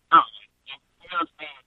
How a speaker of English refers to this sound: So, you're a little cut off. I think you're far from your phone